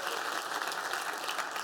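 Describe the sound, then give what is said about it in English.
An audience claps steadily, a dense wash of many hands with no individual claps standing out, holding an even loudness throughout without any voices. “We can clap because the future that God has for us is so much greater than what we could anticipate on our own.”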